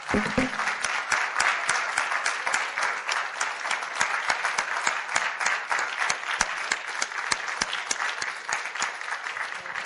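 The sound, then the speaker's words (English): Sustained applause from an audience for standing veterans on Veterans Day fills the whole stretch, a dense, steady roar of many hands clapping at a fairly even loudness with sharp individual claps popping out, no voices on top. “And don't give them a patty cake. Let's clap.”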